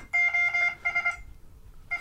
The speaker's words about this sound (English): You just hear this on your phone. This is SOS on Morse code.